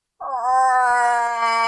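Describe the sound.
A moose hunter imitates the call of a cow moose in heat at about 2 o'clock in the morning in a cabin: one long, loud, nasal moan that rises slightly in pitch and holds steady for about a second and a half, with no other sounds.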